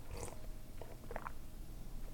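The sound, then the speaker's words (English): Quiet sips of hot tea: a few soft slurping and wet mouth noises spread over a couple of seconds, with faint low background hum and no talking. “I'm gonna sip my tea real quick.”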